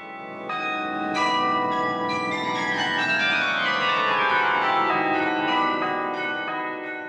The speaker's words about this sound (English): It's a unique instrument in this country. This 49-bell carillon. It's the largest in Britain and Ireland in terms of number of bells. But it's a tradition that basically comes from the lowlands of Flanders and the Netherlands.